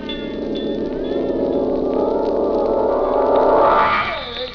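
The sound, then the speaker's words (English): A fire bell at a gold mine rings continuously and loudly for several seconds, signalling a fire: a dense, rattling metallic clang with sustained high overtones, swelling slightly toward the end before fading off. “That's the fire bell.”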